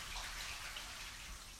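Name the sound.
water trickling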